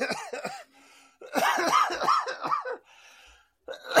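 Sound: cough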